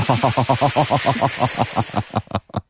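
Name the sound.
snake hiss sound effect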